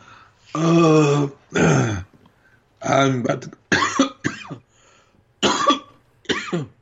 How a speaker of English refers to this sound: sorry about all the coughing, y'all. I got bad allergies right now, so.